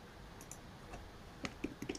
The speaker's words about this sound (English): So this is me clicking on the image to show the screenshot.